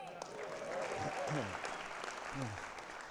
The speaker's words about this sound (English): I heard you clapping for the offering. At least a couple of people here at the front clapped.